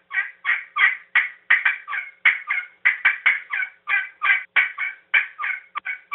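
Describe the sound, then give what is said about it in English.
A rapid, steady run of turkey yelps and clucks blown on a game call, about eighteen raspy notes in quick rhythm, fairly loud, with no talking. “You know, they'll cluck in between yelps, and a lot of times they'll just walk through the woods and just cluck.”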